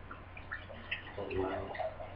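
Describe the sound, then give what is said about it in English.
Red beer from a just-opened container pours steadily into a glass, a continuous splashing gurgle lasting a couple of seconds, with a faint voice murmuring briefly partway through. “And the pour.”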